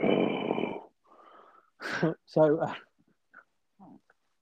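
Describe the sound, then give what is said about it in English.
A voice imitates a loud, raspy bout of heavy breathing in a 'gold dust' style, one long rough exhale, followed by a few short voiced sounds and bits of speech. “that was no, by the way, not just me heavy breathing at the thought of Francine.”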